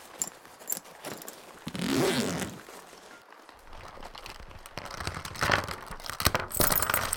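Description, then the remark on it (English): A zipper rasps open on a bag pocket, followed by rustling, crinkling and rummaging as small items (a wallet, a trailer key, three pens, a lip balm and two phones) are pulled out and handled, with occasional light clicks and taps. “Empty out your bag pockets.”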